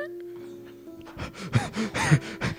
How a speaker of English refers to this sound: Oh my god. He's already panting. Did you run here? Did you run here? No. No, I... Oh, you just got out of that Lamborghini there. I just pulled out of the Lambo.